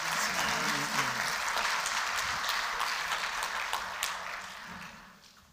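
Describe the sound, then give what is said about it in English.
An audience breaks into sustained applause, a dense wash of many hands clapping at once that holds steady for several seconds before gradually tapering off at the end. “Can we give these guys a great big round of applause?”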